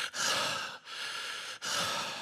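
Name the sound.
imitated heavy labored breathing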